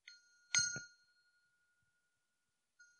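A doorbell dings twice in quick succession, bright metallic tones ringing out and slowly fading, with the start of another chime just as it ends. No one speaks.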